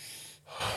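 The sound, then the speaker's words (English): A quick, deep breath drawn in through an open mouth during breath work, airy, swelling louder toward the end. No one speaks. “So when we're doing the breath work, I'll say, into the belly, into the chest, let go. Belly breathing.”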